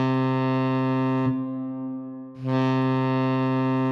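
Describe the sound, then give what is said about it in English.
A research vessel's alarm, sounded during safety training, blares as a loud, low, buzzy horn tone, sounding in two long steady blasts separated by a brief softer dip, harsh and rich in overtones, with no voices; it can signal fire or pirates. “First lesson is about the alarm sounds the ship might make, like this one.”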